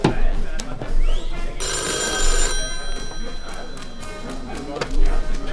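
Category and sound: household object, telephone ringing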